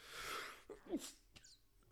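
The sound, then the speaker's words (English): A single loud, breathy sneeze: a harsh hissing burst, then a short voiced catch of breath and a few softer puffs of air. No one speaks. “Oh God, I feel a sneeze coming on here.”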